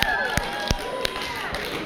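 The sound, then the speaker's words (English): A handful of scattered claps from an audience, sparse and uneven, ringing out over a low murmur of the crowd. “You're getting applause because you had the courage to admit that.”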